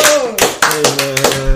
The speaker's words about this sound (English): It's been let's clap it up for that boy